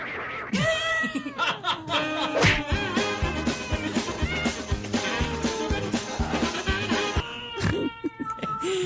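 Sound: cat meowing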